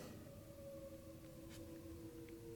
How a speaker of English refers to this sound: There's a bunch of sirens over here. I don't know if you guys can hear it. Are they coming to get you?